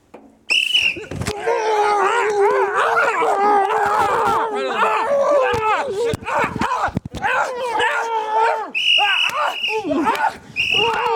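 A dog named Ginger barks and yowls, loud and almost continuous for about ten seconds, its wavering, drawn-out cries broken only by a few short pauses.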